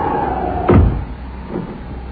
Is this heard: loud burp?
no